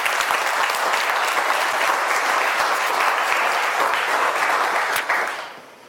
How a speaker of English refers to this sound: Let's just give them a warm round of applause.